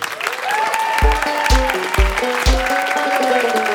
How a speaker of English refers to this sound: That's good getting applauded before you've done anything. I really like that.